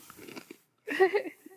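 A crisp crunch of someone biting into a cookie, followed by a burst of loud chewing, with softer munching before a brief silence.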